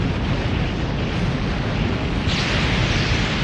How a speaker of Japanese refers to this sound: まだ物理的な衝撃波だ。アブソーバーを最大にすれば耐えられる。